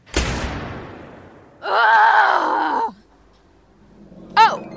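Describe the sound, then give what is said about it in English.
In a Park Service garage, a door thuds shut as a woman closes it behind her, then a muffled, stifled scream of frustration rises and holds for just over a second before cutting off. A brief high squeak follows. “Zoe closes the door behind her and lets out a stifled scream of frustration.”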